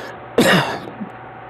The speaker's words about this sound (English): Boy, that cough, I'm telling you, man.